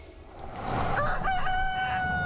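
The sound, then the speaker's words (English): A rooster at a Popeyes fried-chicken restaurant in Louisiana crows once, loud, its call rising and then holding a long, strained note over a steady background hum, with no one speaking. “That is Rocco the Rooster.”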